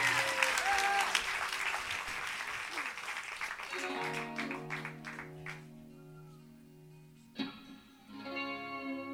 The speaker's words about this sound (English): If you guys just want to clap again, that'd be cool. Thank you.